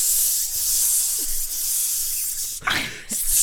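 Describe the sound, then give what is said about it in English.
A steady hiss of aerosol body spray runs continuously for a few seconds, with a brief rattling shuffle near the end before the spraying carries on. “Oh, I thought it was telling the story of what happened after Jesus found Axe body spray.”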